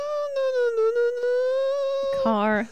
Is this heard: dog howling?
yes